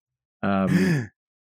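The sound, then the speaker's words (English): A single short, voiced gasp delivered in a flat, mechanical robot-like tone, as if a person is imitating a machine, fairly loud, about half a second long, then silence. “And gasps in robot.”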